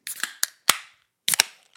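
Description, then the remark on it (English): A can of beer brewed with marshmallow fluff, cacao nibs and lactose is cracked open: a quick series of sharp, bright pops and clicks, each trailing off in a short fizzy hiss, with no voices. “that was such a good crack.”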